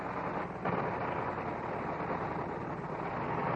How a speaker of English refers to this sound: And you'll hear the inertia starter. They started with an inertia starter, which was a great spinning flywheel. They would crank and get this baby going. And listen how rough it sounds as she starts.